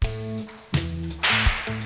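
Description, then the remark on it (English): Two sharp whip cracks in a song's intro snap out over a steady, tonal musical backing, the first about midway through and the second shortly after, each loud, with no talking. “But also, I would say this is the number one song that I've really only listened to the intro for the Whips to.”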